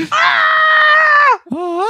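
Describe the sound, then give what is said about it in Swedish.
A person loudly imitates a barbarian character's battle scream, holding one long, strained, steady yell before breaking off into a second, shorter cry that rises in pitch. The voice is alone. “Så bara, kan vet, du härma det skriket som din barbarian-karaktär?”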